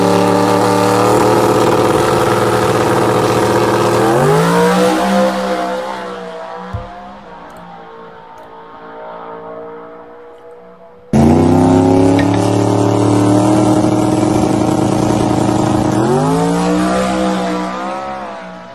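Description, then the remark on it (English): A loud car engine, from a Facebook post by John Lund Jr. of what he calls the 6RLIDE, revs hard, its droning pitch climbing and falling in sweeping waves, then cuts off abruptly before a second stretch of revving rises again, with no talking. “put up a post of what he calls the 6RLIDE.”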